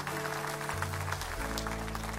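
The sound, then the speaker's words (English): An audience applauds steadily as a clap offering of love and appreciation to the Lord, dense overlapping claps forming a continuous wash of sound, with a low sustained organ or keyboard tone shifting pitch underneath. “Would you give the Lord a clap offering of love and appreciation?”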